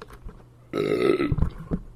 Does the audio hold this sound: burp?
yes